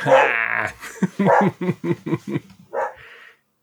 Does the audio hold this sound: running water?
no